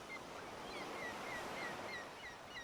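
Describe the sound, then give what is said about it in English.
Soft, steady surf washes continuously against a beach shore, a broad hiss of gentle waves with faint seabird calls drifting above it, no voices present. “Hear the gentle rush of waves on the shore.”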